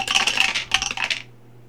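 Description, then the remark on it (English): Dice clatter down through a tower in a quick burst of bright, rattling clicks and bounces, settling after about a second into quiet with a low steady hum underneath. “He used the dice tower for that, just so you know.”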